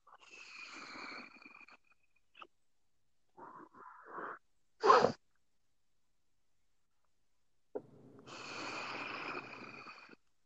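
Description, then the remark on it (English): A flashing LED skull vaporizer in use: a long airy, wheezing draw, a few short clicks and puffs, a sharp loud burst, then another sustained hissing pull. No one speaks. “The noise you're hearing is a flashing LED skull vaporizer that I recently purchased in an attempt to quit smoking cigarettes.”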